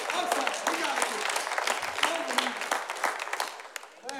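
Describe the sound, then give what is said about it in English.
An audience applauds steadily for about four seconds, a dense wash of many hands clapping at once, with a few voices calling out underneath before it thins at the end. “That is the second clap that you've missed.”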